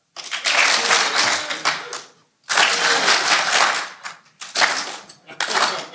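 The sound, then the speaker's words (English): An audience at a live recording claps on request in three loud, dense bursts, each swelling quickly and then breaking off into brief pauses between rounds. “All right, I want everybody to clap.”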